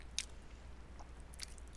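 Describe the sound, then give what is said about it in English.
Someone chewing a sweet food with their mouth open, giving a few soft, wet smacks and clicks spaced irregularly, quiet, with no talking. “I should probably chew with my mouth open A then.”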